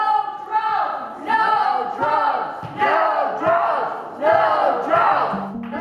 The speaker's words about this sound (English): So when our request showed that the Seattle Police Department had bought two drones and were looking to buy more, people flocked to a city council meeting in protest. No drones! No drones! That's what you've been hearing.